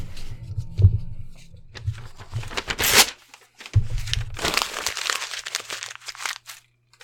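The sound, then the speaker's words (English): A paper script being crumpled up in several bursts of dry crinkling and crunching, loud and irregular, with brief pauses between handfuls and a thump or two underneath, then trailing off. “I'm throwing the script out at this point.”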